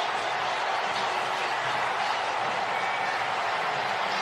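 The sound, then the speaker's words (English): An NFL stadium crowd cheers after Miami quarterback Ryan Fitzpatrick's touchdown pass gives Miami a 26-24 lead over New England with 24 seconds to go: a loud, continuous roar, a dense wash of many voices holding steady for about four seconds with no distinct speech above it. “And the crowd now knows it.”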